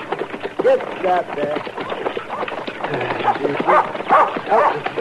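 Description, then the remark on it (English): A dog barks and yips repeatedly, the sharp, excited calls coming in quick bursts with muffled voices underneath. “Get away, dog.”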